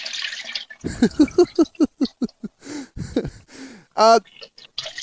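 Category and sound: household object, liquid being poured out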